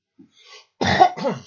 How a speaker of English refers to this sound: Excuse me. I got a little cough going here today.